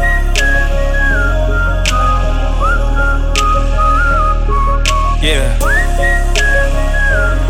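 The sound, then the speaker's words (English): Someone whistles a short, sliding melody over a steady beat, the tune weaving in and out above regular percussive hits and a heavy low backing, fairly loud throughout. “She got me thinking about her daily while I whistle down the street like.”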